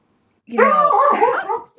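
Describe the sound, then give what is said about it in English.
A puppy named Gracie lets out a single drawn-out, wavering whine, almost a little howl, lasting about a second. It is clear, with no talking over it. “Is that your puppy?”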